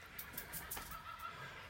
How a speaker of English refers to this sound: Oh, listen to those birds.